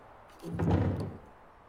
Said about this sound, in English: I knew he could not see the opening of the door. I continued to push the door, slowly, softly.